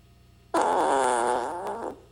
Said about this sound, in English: This is a common fart.